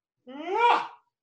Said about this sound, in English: How are you yawning?